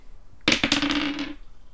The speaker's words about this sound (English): Do I have anything that can make a noise? Hold on. Do you have anything that can make a dice noise? I have a D20 nearby.